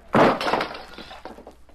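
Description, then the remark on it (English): A lamp crashes to the floor after someone kicks the table, with a sharp, loud impact, followed by glass breaking and scattered bits tinkling and settling for a second afterward. No voices. “Somebody kicked the table and the lamp crashed to the floor.”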